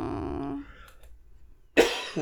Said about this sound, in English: I have to apologize for all the coughing, folks. I am still getting over this cold, and it's annoying.